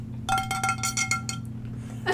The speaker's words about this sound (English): We have an actual frying pan. And you just have to... You have to hit it somehow. It's not very. It doesn't make very frying panny noises.